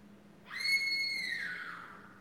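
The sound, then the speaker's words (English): A single high-pitched scream from a girl, loud and sustained for under two seconds before sliding down in pitch and fading. No talking is heard over it. “Oh, got free loud girl screaming sound effect.”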